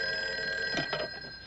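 An old-fashioned telephone bell rings with a bright, sustained metallic jangle, fairly loud, holding steady through the moment with no voices over it.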